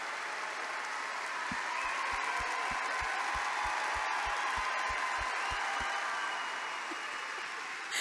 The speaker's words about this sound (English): We have an incredible panel of guests, so please give a huge round of applause to Anthony Daniels.